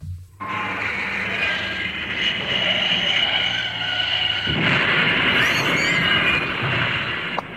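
A loud, steady engine roar with a low rumbling drone that swells into harsher, rougher noise partway through, like a heavy tractor motoring past. No voices are heard.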